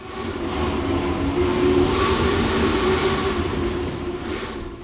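The 611 steam locomotive rumbles steadily along the track, pulling passenger cars refurbished from the 1940s, 50s and 60s, its deep, continuous roar and clatter loud throughout, with no voices present.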